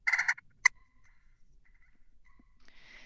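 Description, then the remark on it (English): A turkey call makes a short, rolling purr followed by a single sharp cluck, clear, then quiet with faint rustling afterward. “And then if you slip in if you purr and then you slip in a cluck at the end of the purr, that.”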